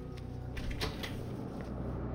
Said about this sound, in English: Greg turned to open the door.